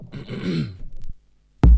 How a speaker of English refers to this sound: Just clear my throat. All the fizzy drinks.